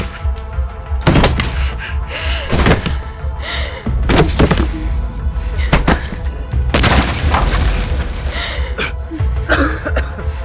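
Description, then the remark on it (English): Heavy, forceful thuds strike a locked door five or six times at uneven intervals in an attempt to knock it open, each blow loud over a constant low rumbling background. “Can we still knock it open?”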